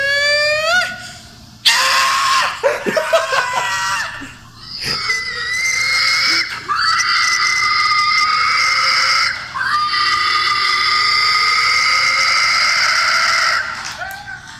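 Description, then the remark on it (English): A man shrieks a long series of loud, piercing pig squeals in a pig-calling contest, his voice imitating a hog with rising, harsh, sustained squeals and brief breaks between them. “Okay, I want everyone to turn off the podcast now if you get triggered by pig noises made by human beings.”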